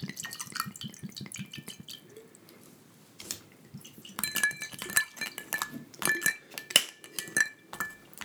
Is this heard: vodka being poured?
yes